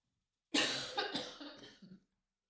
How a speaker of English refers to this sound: Pause for coughing.